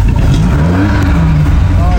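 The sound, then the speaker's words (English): An MG3 car engine revs loudly, its pitch climbing and dropping in quick surges over a constant heavy rumble, at an MG Car Club motorsport sprint event at Kerberos. “the MG3, although it might be a fairly modern car, is still good fun and a good little car for sprinting and hill climbing, and makes the point that this is such an accessible form of motorsport within the MG Car Club,”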